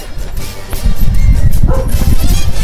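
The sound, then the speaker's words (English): A dog barks repeatedly in quick succession at the front door, loud, with a few higher yipping notes mixed into a dense, rumbling background. “there is a dog at the front of the door”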